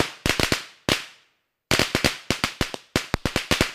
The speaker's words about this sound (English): Fireworks exploded in the sky to celebrate Jack and Godzilla's victory.